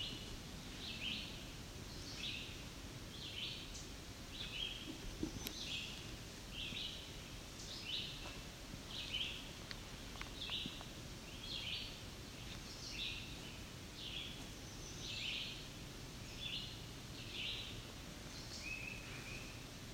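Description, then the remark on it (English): A male chestnut-sided warbler gives sharp, repeated ticking chip notes at a steady pace of roughly one per second, over a soft rustling outdoor background with no talking. “I believe it's our chestnut-sided warbler that's ticking.”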